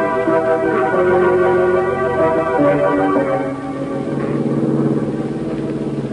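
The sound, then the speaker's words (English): A steady engine rumbles as a car drives along and eases closer to the curb beside a man walking towards it, its tone shifting slightly as it slows. No one speaks. “That's him there, walking towards the car. Yeah. Pulling closer to the curb.”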